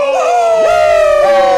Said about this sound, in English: fans have been tweeting their displeasure with our frat-like antics whenever we all yell into the microphone.